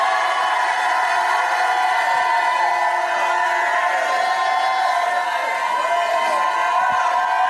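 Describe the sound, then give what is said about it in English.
A large audience at a church service shouts and cheers all at once in response to a preacher's call to jump up and shout: a loud, steady roar of many voices with whoops rising over it, sustained without a break. “If you believe it, jump up like you never and shout like you've never shouted in your life.”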